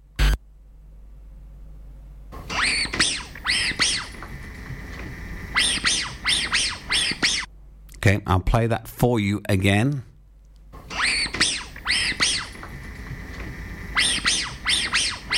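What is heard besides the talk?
squeaky dog toy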